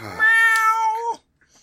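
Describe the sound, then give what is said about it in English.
A single drawn-out cat meow, loud, holding a steady tone for about a second before cutting off, followed by near silence. “Meow. This is not gonna go good.”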